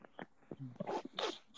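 Heavy, harsh coughing in a run of rough, throaty bursts, the later ones louder and more strained, with short gaps between them and no talking.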